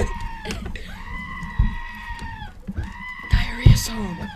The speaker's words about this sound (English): Just screaming goat in the background.